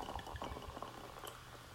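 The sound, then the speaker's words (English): Wine pours into a glass until it is full, a steady splash and gurgle, fairly quiet and continuous for a couple of seconds, with no voices. “Got a full glass over there.”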